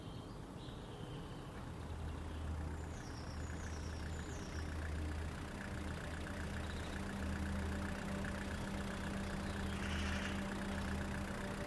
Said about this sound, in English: When Eddie pulled into the driveway in his green pickup truck, Mark was ready.